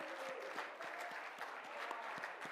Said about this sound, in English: Let's stand and clap our hands and praise Him tonight. Come on, clap your hands. Give the Lord praise tonight.